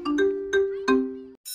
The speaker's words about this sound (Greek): Το Solidarity Now χτυπάει το κουδούνι.